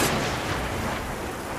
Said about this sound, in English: It is raining outside, thunder is cracking, and there is a dramatic bolt of lightning.